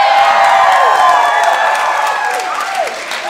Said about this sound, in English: So what do I want? Well, let's just start with tonight. Besides rapturous applause from you people.